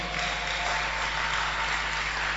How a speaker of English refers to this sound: As you are clapping, may somebody also clap for you. Hallelujah.